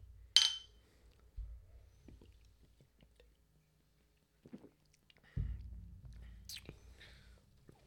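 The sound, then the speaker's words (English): A sharp glass clink from a toast opens, followed by quiet sips and soft mouth sounds from people drinking Ichiban, a very light, low-malt beer of 3.5% alcohol, with occasional low thumps and a brief bright clink later, and no talking. “I didn't even realize I was drinking a beer.”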